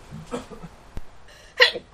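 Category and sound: human body sound, sneeze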